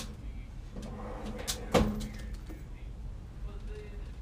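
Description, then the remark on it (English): A drawer is worked as a badge is put away in it, with light rummaging clatter and one sharp wooden knock midway as it slides shut, over a steady low background hum. “I'm going to put this in the drawer.”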